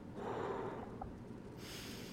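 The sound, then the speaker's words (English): A voice imitates someone breathing hard with their nose and face right beside the speaker: heavy, snorting breaths, a rough nasal exhale followed by a softer, breathy hiss, with no words spoken. “but all of a sudden I could feel someone just like, literally someone had their nose and face right side of me going...”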